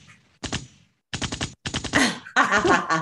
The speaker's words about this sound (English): Yeah, so I got definitely gotta have the gunshots going, you know, right now.